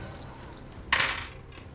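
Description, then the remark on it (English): A short, bright clatter of dice, one action die and two challenge dice, tumbling across a hard tabletop and landing on 6, 4 and 3, a sharp burst that rattles and settles within a moment, with faint clicks just before and no voices. “So that's a 6 on the action die versus a 4 and a 3 on the challenge dice for a strong hit.”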